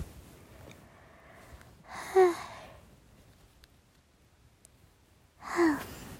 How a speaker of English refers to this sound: I just yawned